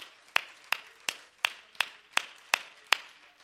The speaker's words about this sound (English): I think we ought to clap our hands to the Lord and let him know, "I'm glad I know who you really are. Father, I love you."